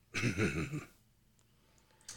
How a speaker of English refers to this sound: Who's coughing right now? I think. What? Did you hear that?